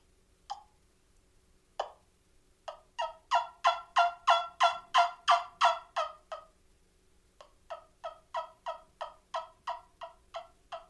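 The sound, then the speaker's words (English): A turkey suction call, blown by kissing its end, gives two sharp single clucks, then a long rhythmic run of raspy yelps that swells louder and fades, followed by a second steady series of yelps, clear with no talking. “It'll do yelps and clucks pretty good, but anything other than that, like, I've seen a guy do a purr, and it was pretty impressive how he did it, but it still wasn't anything like a pot call or a mouth call.”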